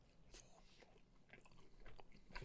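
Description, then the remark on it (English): Chewing and biting on chicken from Kismet in LA, wet crunchy mouth sounds repeating irregularly right against the microphone, with no talking. “Why don't I chew into the microphone?”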